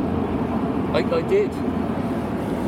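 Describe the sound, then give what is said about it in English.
A loud train passes beside a river, heard from a canoe, with a steady low rumble that fills the whole clip. A brief voice or higher warbling sound rises over it midway. “Sod's law, as a train passes, there's a beaver right next to us.”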